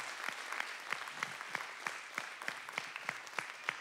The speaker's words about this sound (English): So why don't we give our children's and youth workers a round of applause this morning? Come on.